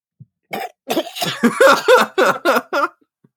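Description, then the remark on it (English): A voice imitates the hacking coughing fit of a character who swallowed his cigarette while lurking in the shadows: about eight quick, harsh coughs in a rapid, sputtering burst lasting a few seconds, fairly loud, with no other talking. “The best thing would have been if he was just speaking out loud, like, Foswell, you're a genius, and he swallowed his cigarette. Just there coughing in the shadows.”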